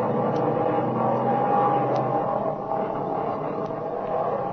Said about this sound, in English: You brave aviators, here's your sky buggy. That engine's talking now like a lady sewing circle.